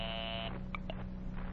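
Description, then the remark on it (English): A single harsh, buzzing telephone ring, as an operator rings the Jerusalem airport, lasts about half a second, then gives way to steady line hiss with a couple of faint blips. No one speaks. “I am ringing, sir.”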